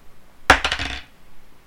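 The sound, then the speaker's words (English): A small hard d20 die clatters onto a tabletop, a sharp first impact followed by several quick rattling bounces over about half a second, fairly loud, then silence. “Roll a d20, please.”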